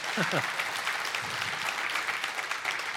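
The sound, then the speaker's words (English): An audience claps steadily after hearing a plan to buy a building for $5 million, a dense wash of many hands with a few brief voices breaking through at the start and middle. “I'm glad you're clapping because that number has kept me up at night and I made it really bold and yellow because I want it to also keep you up at night.”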